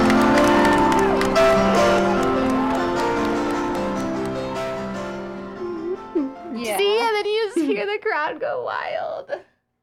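Sustained musical notes open a well-known song at a concert, then the crowd erupts into loud, high-pitched screams and cheers that rise and fall in excited bursts before cutting off.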